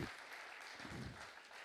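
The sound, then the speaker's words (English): A crowd applauds the band steadily, dense clapping at an even level throughout the short stretch with no voices breaking through. “Anyway, why don't we give the band a clap?”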